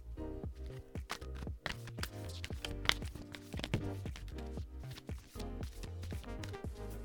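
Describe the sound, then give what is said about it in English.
A deck of oracle cards, the Spirit Animal Oracle Cards by Colette Baron Reed and the Sacred Self-Care Oracle Cards by Jill Pyle, being shuffled: a steady run of quick, papery slaps and taps in an irregular rhythm, over a low humming tonal background, with no one speaking. “Just gonna give them a good shuffle.”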